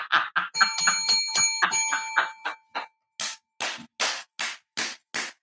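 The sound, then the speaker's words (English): A bell rings rapidly several times, its bright metallic tone sustaining over quick strikes, then gives way to about seven sharp, evenly spaced bursts. Loud, with no talking. “Can I get a bell on that, child?”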